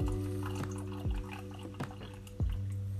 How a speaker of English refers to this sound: Anyways, I'm on my last sip of the Gyokuro Sasahime, and I'm going to pour a second steeping of this tea.